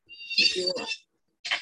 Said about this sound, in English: Oops, you heard my kitty.